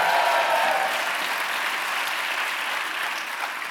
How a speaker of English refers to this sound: Best crowd ever. And then I wrote this book. Woo! That may not have been the answer you're looking for, but I just like hearing them applaud.